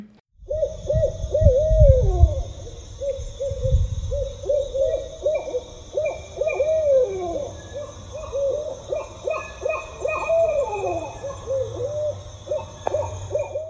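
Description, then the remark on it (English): A rambunctious group of barred owls at a rescue in Illinois hooting in rhythmic, repeated phrases of the 'who cooks for you' call, several birds overlapping in a lively, continuous chorus of mid-pitched hoots with some rising and falling cackling notes. “So it sounds like, who cooks for you? Who cooks for you? Who cooks for you all?”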